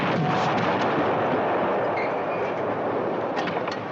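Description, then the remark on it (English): A loud, sustained roar of artillery shell explosion, broad and rumbling, holding steady for several seconds with crackling bursts and no voices. “The next shell isn't due for 3 minutes.”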